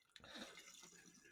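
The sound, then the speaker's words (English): Water being spilled and splashing in a brief, continuous patter that lasts about a second, fairly quiet, with no voices over it. “No, I spilled water.”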